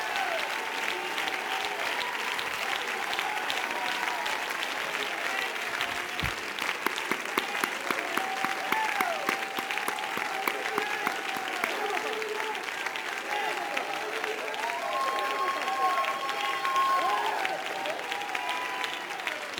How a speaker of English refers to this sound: I hear the sound of abundance. Everybody clap your hands and shout.